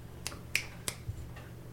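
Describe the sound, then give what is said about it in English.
Three crisp finger snaps in quick succession, sharp and bright, followed by a fainter fourth click, over a steady low hum with no talking. “Snap. Snap, Anne Heche.”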